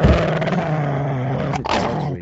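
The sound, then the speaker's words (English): A dog growls low and steadily, a rough rumbling snarl that holds for over a second, breaks off briefly, then starts again. No one speaks. “Can you get the dog out of here?”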